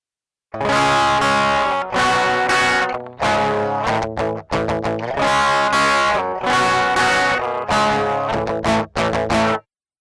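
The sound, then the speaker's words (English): A crunchy distorted electric guitar plays chugging chords in short bursts and sustained stabs, its tone thinned and focused in the midrange as if band-pass filtered, loud with no voices. “But this one I did a band pass. It's fairly wide. It goes from like 800 hertz up to almost like 6K.”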